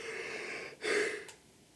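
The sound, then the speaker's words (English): A breathy yawn after eating a lot of Thai food: a long airy inhale, a brief pause, then a louder voiced exhale with a low groaning tone that cuts off abruptly. No one speaks. “We're yawning because we just ate a lot and we're kind of food coma.”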